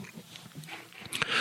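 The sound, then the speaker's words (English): A 15-year-old Scottish Terrier snoring close by in a home studio: soft, snuffly breaths rising into a louder raspy snort near the end, quiet and unaccompanied by any voices. “I have a dog snoring right next to me.”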